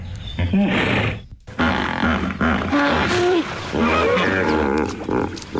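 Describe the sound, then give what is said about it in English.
A hippopotamus bellows in a loud run of deep, rumbling grunts and wheezy honks, breaking off briefly before resuming in an uneven, chuckling rhythm. “So the sound a hippo makes, overrated or underrated, I will now play it for you.”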